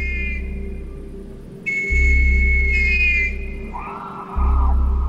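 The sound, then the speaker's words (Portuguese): A whistle and a scream from the woods by a house where scouts had camped before climbing a peak: high, piercing whistle tones sound in a few steady bursts over a constant low rumbling drone, then give way to a harsher, rougher cry that fades before the drone swells again. “Todos se levantam e saem à procura do apito e do grito.”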